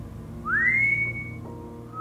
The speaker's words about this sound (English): They both swung around to look down the corridor where the whistling was coming from